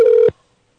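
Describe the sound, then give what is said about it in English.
A single short burst of an outgoing Skype call ringing tone as a guest is called, a steady, clear electronic tone lasting about a third of a second, loud, then silence. No one speaks. “We're going to call them on Skype, because, of course, they hit me with the old, can I give you a landline number?”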